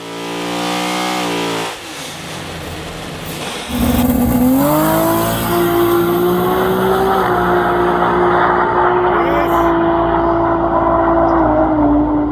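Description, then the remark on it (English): A modified car with a Barra engine revs hard and roars, its pitch climbing then holding at a high, strained drone with a raspy, rumbling exhaust edge, with too much crankcase pressure forcing oil out of the head gasket. No one speaks. “Way too much crankcase pressure, oil shooting out of the head gasket.”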